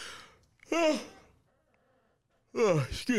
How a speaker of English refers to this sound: Whoever's listening to this is probably yawning with me. My bad, guys.